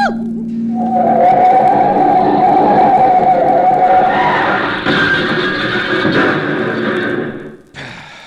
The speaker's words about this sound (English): Oh! Well, have you ever tried to stop a speeding car with an unconscious girl flopping all over you?